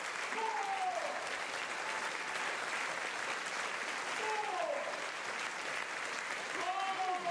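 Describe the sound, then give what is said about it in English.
A large audience applauds at The Great Word Debate of the 2020 Word Christchurch Spring Festival in a dense, steady wash of clapping that lasts throughout, with a few brief whoops or raised voices rising over it. “Ladies and gentlemen, welcome to the Great Debate from Word, which normally generates a spontaneous round of applause.”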